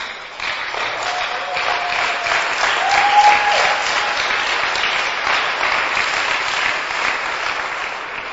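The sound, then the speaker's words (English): A church audience claps steadily for several seconds, celebrating a man's 81st birthday, a dense, even wash of many hands applauding that holds at a fairly loud level without fading. “Even if you come to church and you don't know why people are clapping, but you clap, some blessing will come to you.”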